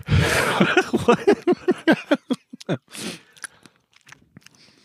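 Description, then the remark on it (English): A loud, juicy bite into a strawberry bought at Walgreens, then a steady run of wet, squishy chewing that gradually slows and fades over a few seconds, with no talking. “It's a Walgreens strawberry.”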